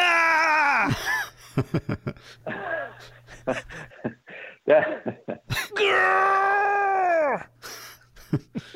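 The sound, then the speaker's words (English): A man lets out two long, strained, defiant screams that sag in pitch at the end, separated by a run of short choppy vocal bursts and gasps, loud. “Hey, give me a fuck you scream.”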